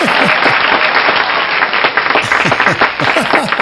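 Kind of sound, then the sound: sound effect, applause sound effect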